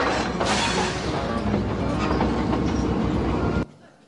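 A train rolls along the railroad track, a loud, steady rumble and rattle of wheels and cars that continues for several seconds before cutting off abruptly.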